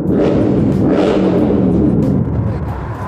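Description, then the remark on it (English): Motorcycle engines rev loudly outdoors in New York City, a steady throaty rumble that surges in pitch a couple of times before easing slightly near the end. No one speaks. “Assholes revving up their bikes because they got little penises.”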